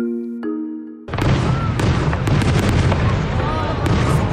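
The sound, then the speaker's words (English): A short musical tone gives way to a loud, dense barrage of fireworks exploding, with continuous crackling and rapid sharp pops layered over a rumbling roar. “Fireworks and Canada Day are a long-standing and familiar pairing.”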